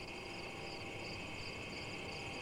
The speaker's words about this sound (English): It's probably at dusk, like almost we're... Yeah, almost dark. And the crickets are coming out.